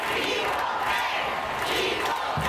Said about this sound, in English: That's a packed crowd last night at Audi Field here in Washington, moments after the men's and women's U.S. national teams signed a historic collective bargaining agreement guaranteeing equal pay for both teams.